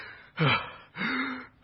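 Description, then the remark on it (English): A voice imitates labored, heavy breathing: three loud, raspy gasping breaths in a steady rhythm, each with a strained, voiced edge, alone with no talking. “And then suddenly, we hear the labored breathing”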